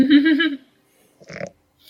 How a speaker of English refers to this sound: It's such a cute familiar. It's Cinnamon the Goat. A little teeny tiny goat.